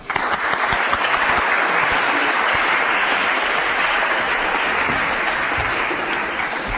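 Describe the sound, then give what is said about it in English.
Sustained applause from a sizable audience at a talk, a round of applause for Andrew Peake: a dense steady roar of many hands clapping at a constant loud level for several seconds without a break. “And we are let's please have a round of applause for Andrew Peake.”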